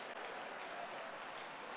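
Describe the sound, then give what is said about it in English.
Many hands clap at once in a dense, continuous patter as people clap to command out strange spirits during prayer, the individual claps blurring into a steady wash of sound with no voices standing out. “Clap your hands and command out.”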